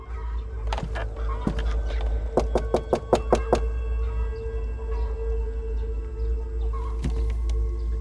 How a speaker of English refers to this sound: It was time to go knock on the door.